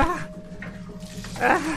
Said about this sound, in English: No! They're squirting me down. They're squirting me down with water. I was just feeling... I was feeling pretty good, and now I'm all wet.